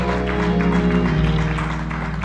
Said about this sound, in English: I was glad when they said unto me, let us go to the house of the Lord. Give God a hand clap of praise on tonight. Amen.